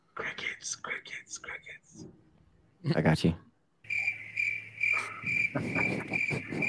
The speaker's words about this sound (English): Crickets.